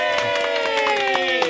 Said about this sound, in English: Well, that definitely gets a Yay! Cheer.